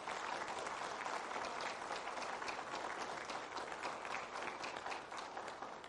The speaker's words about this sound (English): If you would, just give a round of applause for our veterans this morning.